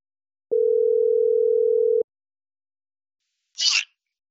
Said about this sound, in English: He, like, gets out his cell phone and, like, dials Marcellus's number.